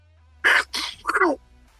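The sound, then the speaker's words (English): A person imitates Donald Duck sneezing in a squawky, quacking duck-like voice: three quick, loud bursts, two breathy hisses and a final nasal, quacky blast, about one second long. “I could do Donald Duck sneezing.”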